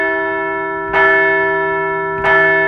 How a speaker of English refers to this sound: So let's ring the bell for a solid weekend.